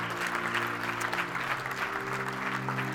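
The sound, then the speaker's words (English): Steady applause for the Lord from a large gathered crowd, sustained and fairly loud, with a low sustained musical drone or organ tones underneath. “Can we give the Lord just another round of applause?”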